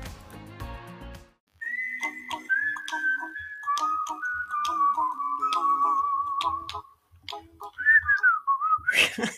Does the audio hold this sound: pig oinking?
no